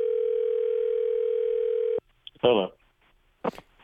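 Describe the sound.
A steady telephone dial tone hums for about two seconds, then cuts off abruptly, followed by brief clicks and a short burst of voice as a phone call to a retired detective connects.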